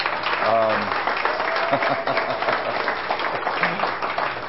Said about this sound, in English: And I think the pianist really deserves a round of applause.